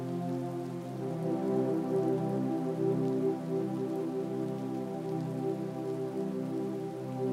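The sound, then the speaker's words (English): Steady rain patters down on a surface, a dense, continuous wash of drops with low rumbling undertones, holding an even loudness throughout with no voices. “Do you like the rain?”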